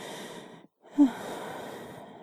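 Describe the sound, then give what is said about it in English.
A breathy yawn: a drawn-in breath, a brief pause, then a longer airy exhale that swells briefly before trailing off. No talking. “Now I'm definitely starting to get sleepy.”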